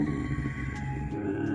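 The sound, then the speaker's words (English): A voice imitates a creature's low, growling hum, a creature that is not angry: a steady, rumbling drone with a buzzy texture that holds at an even loudness throughout, with no words spoken. “It just starts growling again, and it's not angry, but it does start growling at you, and you hear it kind of hum, and it's just like...”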